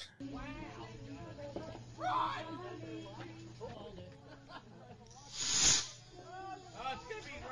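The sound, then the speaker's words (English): Voices chatter in the background, then a single loud, hissing whoosh flares up near the end as fireworks lit in the street in front of a house hit a stockpile of fireworks behind a minivan, a rushing burst lasting about a second before fading back under the talk. “It's just people hanging out in front of their house, just like lighting off fireworks in the street. And it hits like the stockpile.”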